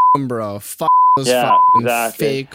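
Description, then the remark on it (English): Speech chopped up by three flat, steady censor bleeps covering swear words, each lasting a fraction of a second, loud in the foreground while a voice talks between them. “good luck beeping all those bombs.”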